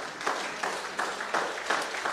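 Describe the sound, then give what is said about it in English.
An audience claps together in a dense, steady wash of applause, giving the Lord a clap offering, with rhythmic surges roughly three times a second. No voices can be heard. “If you believe that, give the Lord a clap offering in this place.”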